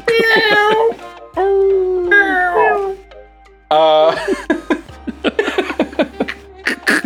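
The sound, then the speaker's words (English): A person vocally imitates an animal roar as a 'roar for Rogue' cheer, with several drawn-out, howling, strained bursts, loud, followed by choppy laughing sounds. “I like to roar for Rogue. Yes. Roar! Hashtag roar for Rogue.”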